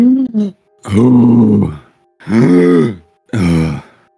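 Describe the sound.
A voice mimics exaggerated, heavy deep breathing: a short gasp, then three long, loud, voiced breaths with a groaning, grunting quality, spaced by brief pauses, alone.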